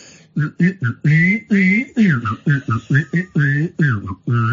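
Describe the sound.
A person whistles a tune while humming along at the same time, producing a bright whistled melody over a low buzzing hum in a quick series of short, separate notes.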